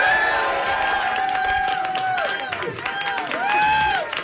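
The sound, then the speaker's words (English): An audience claps in a dense, continuous patter as a winner is announced, while several voices hold high, wavering tones over the applause, rising and falling in repeated swoops. “Listen to them doing it while applauding.”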